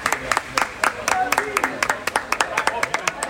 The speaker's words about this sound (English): Let's try and give a little nod to Jude when he gets out. Maybe a little clap for Jude, actually.